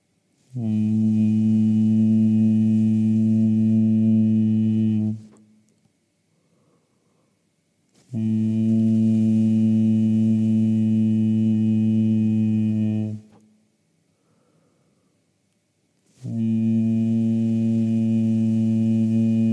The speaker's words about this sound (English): And going back to the hum, the soft hum again.